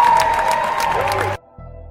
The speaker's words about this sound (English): Thank you all so much for coming out. Give them a huge round of applause.